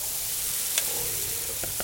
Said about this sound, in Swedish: Men nu vill man höra det här fräset när smeten når. Eller hur? Omisskännligt.